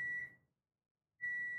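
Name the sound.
electronic beeping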